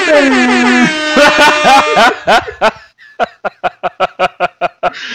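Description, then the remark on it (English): A voice mimics an air horn: one long blaring blast, then a string of quick stuttered honks, trailing off into a rhythmic run of short laughing bursts. “Air horns are so key for the twist in future shocks, buddy.”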